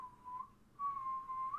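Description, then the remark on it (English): A person whistles a steady, sustained tone with the mouth, broken by a short pause and then resumed, clear with no talking. “I'm sorry, I don't have a freaking whistle to celebrate, so I'm gonna have to whistle myself.”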